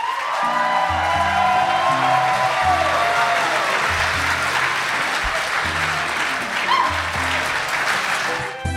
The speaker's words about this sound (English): as a crowd comes around you, they start to applaud as you have done this epic deed today.